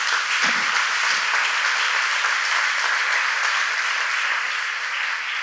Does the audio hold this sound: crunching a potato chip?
no